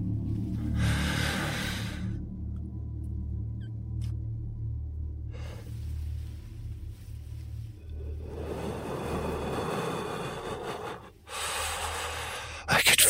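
A man lying asleep in bed breathes heavily and slowly, with a few long, raspy, snorting breaths spaced seconds apart over a low steady rumble. No one speaks.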